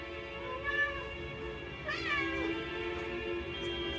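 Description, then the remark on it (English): A kitten meows twice, a short high cry followed by a longer, rising-and-falling mew, against a steady background hum with no talking. “Here, kitty kitty.”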